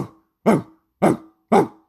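Three sharp, loud dog barks in quick succession, evenly spaced about half a second apart, clear with no talking.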